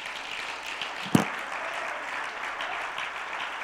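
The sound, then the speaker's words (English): A church audience claps hands for the Lord in a steady, dense wash of applause, with one sharper, louder clap standing out early on before the clapping continues evenly. “Would you clap your hands for the Lord a minute?”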